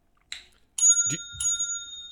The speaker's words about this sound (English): We have some buzzer options this year as well. Patrick, let me cue this up. So we got normal bells.